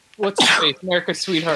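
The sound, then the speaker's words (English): A single sharp sneeze bursts out loud, tangled with a person talking before and after it. “bless you, by the way.”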